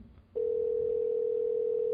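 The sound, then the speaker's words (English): A telephone ringback tone on an outgoing call: a steady, loud electronic hum that starts abruptly after a brief moment of low background noise and holds unbroken to the end, with no voices. “It is ringing.”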